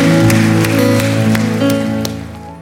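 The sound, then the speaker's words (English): A church audience claps for seven people who raised their hands, a steady, dense, loud patter over sustained musical tones, with a few sharper claps standing out before the applause gradually fades toward the end. “Can we give these seven individuals that raised their hand a huge round of applause?”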